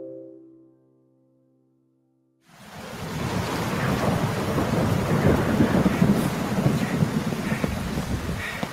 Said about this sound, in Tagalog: Susugurin ko na tong ulan.